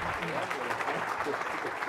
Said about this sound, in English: So if you guys don't mind, a round of applause for our panel, we'll get going.